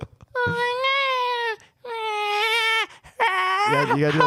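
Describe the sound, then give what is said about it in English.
A woman imitates a cat with three long, drawn-out meows, each about a second, the last one rising then dropping in pitch. The voice is loud, with short pauses between calls. “Are you going to meow?”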